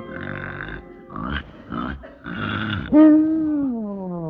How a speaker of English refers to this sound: What a racket. That Conklin has snored me into a splitting headache.